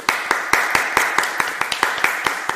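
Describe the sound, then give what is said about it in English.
Hands clap in a quick, steady run, roughly four crisp claps per second for a couple of seconds, fairly loud over a soft background hiss, with no talking. “Oh, clap up for her.”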